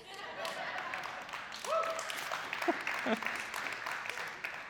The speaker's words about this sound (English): You have the three people who clapped.